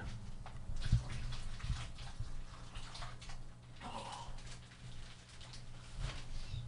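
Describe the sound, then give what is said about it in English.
Wine, a California Cab, pours steadily into a glass, a continuous splashing trickle with a brief gurgle midway, over a low background hum. “I'm just going to pour a little bit more wine.”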